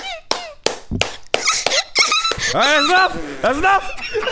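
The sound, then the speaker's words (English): A voice imitates a squeak toy: a few sharp clicks, then a run of high, wavering squeals repeated in quick, rhythmic bursts, fairly loud and without any spoken words. “And she was a squeak toy. I heard her regardless of the fucking music.”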